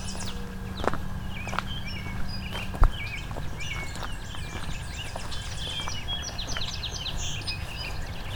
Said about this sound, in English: Tennessee warbler's a bit more in the open now.